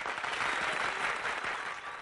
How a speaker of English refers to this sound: Damn. Sorry the applause drowned you out there, Mladen.